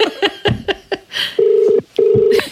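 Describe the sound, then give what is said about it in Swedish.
A rapid series of short telephone dialing beeps for a call to the Red Lion pub in Australia, followed by two long, steady ringing tones of the outgoing call waiting to connect, separated by a brief pause. “Så jag ringde till Australiens pub, Red Lion, för att få detta bekräftat.”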